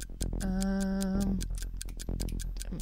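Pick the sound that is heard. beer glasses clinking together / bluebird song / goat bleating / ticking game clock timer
ticking game clock timer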